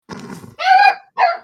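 A dog gives a short, rough growl, then two loud barks with a brief pause between them. No one speaks.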